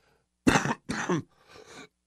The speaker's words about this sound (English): Made it this far without doing that. I've been trying really hard not to cough because I caught some kind of croup while I was out in Vegas.